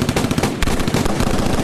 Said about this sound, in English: And so the two rival gangs do what they usually do and open fire on each other.